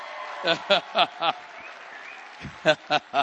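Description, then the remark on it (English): Steady, evenly spaced audience clapping for the speaker's daughter: a run of four sharp claps, a brief pause, then another four, with a faint murmur of voices underneath. “We had a few less claps for her, so I want you to clap again for her.”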